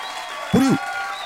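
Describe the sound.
Steady applause from an audience runs throughout, and a short, rising-then-falling voiced exclamation cuts in over the clapping midway.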